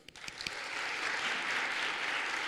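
A morning audience breaks into applause for the speakers, a few sharp individual claps at first quickly swelling into a dense, steady wash of clapping from many hands that holds for a couple of seconds.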